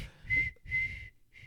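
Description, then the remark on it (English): A lifeguard's whistle blown in three short, breathy blasts, two even toots and then a brief weak one, fairly quiet and a little airy, with no voices. “Oh, God damn, I can't get this whistle to work.”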